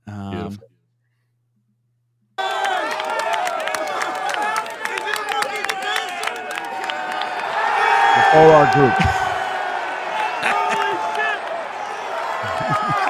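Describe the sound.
A large football stadium crowd roars continuously and loudly after a pass interference call, with cheering, whoops and scattered clapping swelling toward the middle, while a voice speaks briefly over the din.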